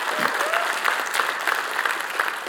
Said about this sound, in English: And of course, they're going to cheer because they agree with me.